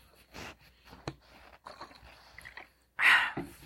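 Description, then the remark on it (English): A quiet sip of water: soft wet mouth noises and small clicks, then a louder brief gulp or slurp near the end, with no talking. “Okay, a little sip of water.”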